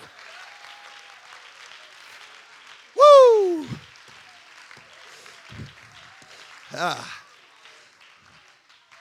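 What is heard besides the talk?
audience clapping hands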